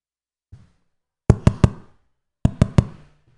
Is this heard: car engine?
no